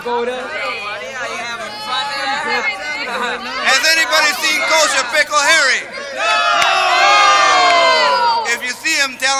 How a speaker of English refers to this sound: it was actually recorded in a small studio in Hollywood, with overdub party noises provided by girls from the Chevelle Car Club who had been invited into the studio